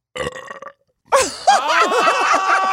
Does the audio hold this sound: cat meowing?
no